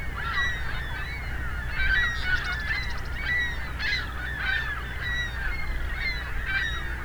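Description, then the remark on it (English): A large flock of ring-billed gulls calling over and over, a dense overlapping chorus of harsh, nasal cries carried on a steady low rumble of wind or background noise. “Ringbill gull calls.”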